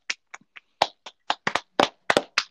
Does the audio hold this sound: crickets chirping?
no